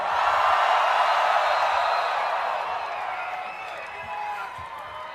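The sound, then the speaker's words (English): A large festival crowd, asked to make noise for a music producer, screams and cheers in a loud, sustained roar of high-pitched voices that slowly fades a little over several seconds, with scattered whoops and clapping mixed in. “Make some fucking noise for one of my favorite producers right now. Everybody, fucking scream!”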